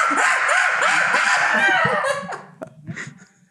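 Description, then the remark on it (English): A person lets out a loud, shrill, wavering screech imitating a monkey for about two seconds, then it breaks off into a few quieter yelps and breaths. “I want to hear my monkey screech.”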